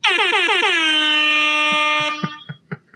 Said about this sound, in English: Go ahead and just blast that rap air horn one more time, buddy.